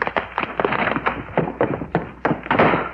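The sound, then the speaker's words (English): A spider knocks a glass bottle of chemical serum to the floor, heard as a rapid, irregular run of hollow thunks and clatters bouncing on a hard surface, with no voices. “spider just got through knocking the bottle of chemical serum to the floor.”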